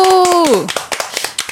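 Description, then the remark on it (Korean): A quick round of hand clapping congratulating a travel writer on the publication of a book about Gyeonggi Province: about a dozen sharp, crisp claps in a fast, slightly uneven rhythm, opening under a voice's drawn-out exclamation that slides downward in pitch. “책 나온 거 축하드립니다. 박수.”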